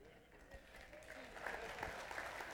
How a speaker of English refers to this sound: Why are you clapping for him? He stood here. I did all the talking. Oh, that was for me.